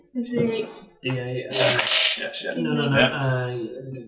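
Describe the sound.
A d8 die is rolled for damage in a tabletop role-playing game, landing on 7, clattering and tumbling across a table in a quick rattling burst that carries on for several seconds. Voices murmur underneath.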